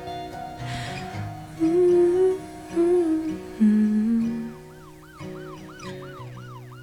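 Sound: police siren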